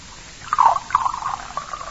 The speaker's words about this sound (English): Sergeant, you're not drinking your beer. Pour some of it in my glass.